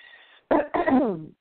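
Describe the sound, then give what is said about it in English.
Two sharp coughs in quick succession, the second drawn out into a raspy, voiced throat clearing, following a brief faint hum. “please excuse my throat. I feel like a song, …”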